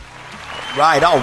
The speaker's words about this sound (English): All right. Easy with the applause.